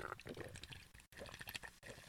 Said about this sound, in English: I'm gonna take a sip of cold bev. You don't mind?